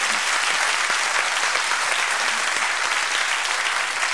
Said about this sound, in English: Well, I guess it's impossible now in Iowa to run into anyone who has not met a candidate. How many of you have met candidates here? Applaud if you've met.